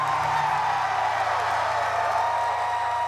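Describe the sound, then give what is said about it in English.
A large crowd in a club, asked to scream, roars and shrieks continuously at high volume, a dense wash of voices with cheering and whooping sustained throughout, no individual words distinguishable. “scream really, really loud if you can, now, scream.”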